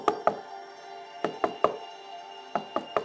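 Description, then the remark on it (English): Knocking on the right side of a massive pink front door of a mansion: three sharp raps in quick succession, a pause, two more, another pause, then three again, moderately loud with a slight resonant ring. “He went to the front door and he knocked on the right side of the pink, massive door to the Bubble Mansion.”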